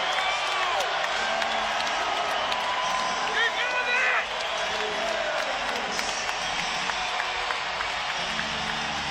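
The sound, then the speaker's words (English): A basketball arena crowd on its feet during a New York–Raptors game roars steadily for the whole stretch, a dense, loud wall of cheering and clapping with a few high-pitched squeals cutting through partway. “Crowd on its feet. Listen to this place.”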